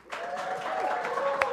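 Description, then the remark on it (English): An audience breaks into steady, dense applause that swells and holds for over a second, with some cheering voices mixed into the clapping, in answer to being asked to clap if they go to baseball games just to day drink. “Now, clap it up if you go to baseball games to just day drink.”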